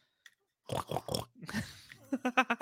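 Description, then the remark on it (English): A person imitates a pig, making a run of nasal snorts and grunts: a few broad bursts, then a quick rhythmic series of short snuffling oinks, fairly loud. “Actually, that's a good snort.”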